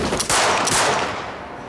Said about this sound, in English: Gunshots rend the still night air, lighting up the dark room. He's about to fire again when he hears a groan. His bullets have found their mark.